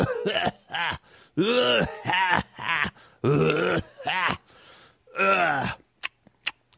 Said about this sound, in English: That smoker's cough. Ugh. Not the worst. People who smoke and then they start coughing. Can almost picture their black lungs and all the gunk coming up.